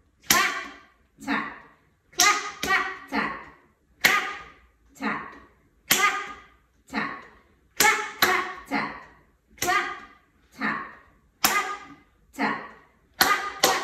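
A steady rhythmic pattern of crisp hand claps mixed with softer, duller gentle taps on the head, repeating in short groups for about fourteen seconds with no talking.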